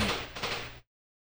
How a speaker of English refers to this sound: there was like fireworks that went off right on the street